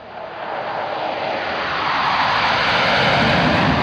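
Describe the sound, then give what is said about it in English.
A deep, broad roar of four huge aircraft flying in formation low overhead, roughly 150 to 200 feet up, swelling steadily louder over several seconds into a dense, rushing engine drone with no voices. “There were four huge aircraft all flying in formation, and they were just so”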